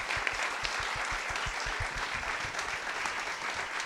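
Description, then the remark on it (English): Steady applause from an audience for a panel, dense clapping that holds at an even, fairly loud level for several seconds with no voices standing out. “First of all, I'm going to get you in a second, but can I just get a round of applause for this panel one more time?”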